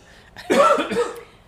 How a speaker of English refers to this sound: Every time I cough, it covers a fart.